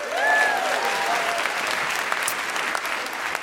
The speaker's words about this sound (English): So give yourselves a big round of applause for that.